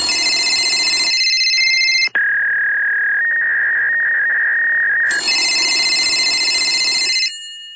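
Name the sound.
telephone ringing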